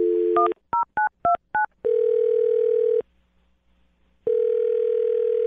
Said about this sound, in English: I'm dialing his phone number right now. Here we go.